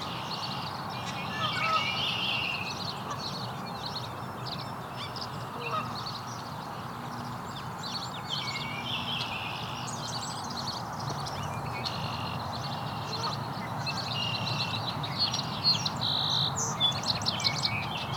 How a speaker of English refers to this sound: Song sparrow. Three males now.